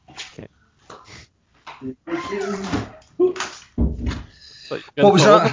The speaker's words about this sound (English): Hang on a minute, I'll just shut this door.